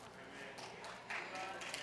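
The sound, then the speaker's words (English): A few people clap sparsely, giving just two or three scattered, uneven handclaps at a moderate level against a low background murmur. “Thank you for the two or three claps.”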